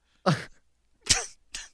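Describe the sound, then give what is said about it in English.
A person fakes a sneeze with their voice: a drawn-out vocal wind-up, a pause, then a sharp, breathy burst, followed by a shorter puff. No other sounds. “What's phenomenal and makes you sneeze?”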